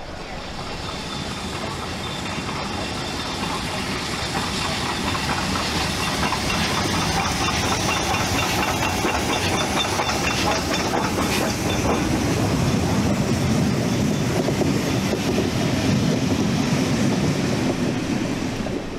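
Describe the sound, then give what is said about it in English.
A train departs a station on the Shrewsbury to Hereford line, travelling north, its wheels clattering on the rails in a steady rhythm over a constant rumble and hiss, fairly loud, building slightly as it picks up pace. “Just after we leave the station, travelling north, we cross the site of the old Clee Hill Junction”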